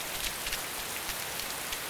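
Heavy rain pours down in a steady, dense hiss, with scattered brighter drops pattering on a surface. The downpour is continuous and fairly loud, with no voices.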